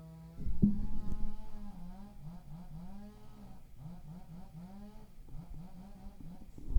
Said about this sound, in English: Okay, now you guys definitely can hear the chainsaws.